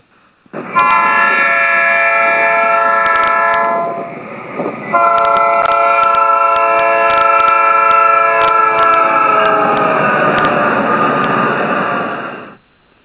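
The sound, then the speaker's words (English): A loud train horn blares in two long, sustained chord blasts with a brief dip between them, dominant, with a faint rumble underneath and no voices. “Somebody blow that train horn to get the Hushmo woke up here.”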